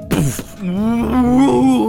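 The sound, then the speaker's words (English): A person imitates a cow's moo while getting into a car: a long, low, sustained vocal drone with a wavering pitch, preceded by a brief breathy onset, lasting nearly two seconds. “Stop doing cow noises.”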